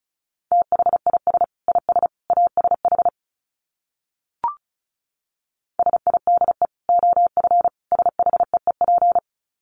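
Rapid Morse code at 35 words per minute, sent as a steady, mid-pitched beeping tone in quick dots and dashes, two long runs separated by a pause with a single soft click between them.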